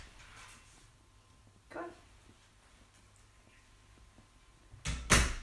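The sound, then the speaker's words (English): A door is opened to let a dog out: a soft thump early on, a quiet stretch, then a loud rattle and clunk of the door near the end. No one speaks. “Just let the dog out.”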